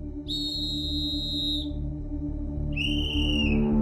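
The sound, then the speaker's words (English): Two long, shrill blasts from an emergency whistle, blown as a call for help by a person stranded on a ledge at sunset, separated by a short pause, over a steady low rumble in the background. No one speaks. “I blew my whistle, and it was very faint, but I started blowing my whistle like crazy.”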